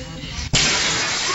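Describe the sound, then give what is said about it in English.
A sudden loud crash of glass shattering as a deer bursts through the window of a hair salon, after a muffled lead-in, followed by a sustained harsh wash of noise as debris scatters. “Great moments in deer getting indoors history, like this one of a deer crashing through the window of a hair salon.”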